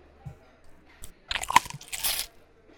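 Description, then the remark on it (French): A crunchy bite into a toad burger followed by a few wet chewing sounds, bursts of crackle and squish over a couple of seconds with no talking. “Ok, t'avais un burger.”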